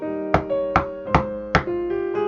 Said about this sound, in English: But alas, there is a banging at my door.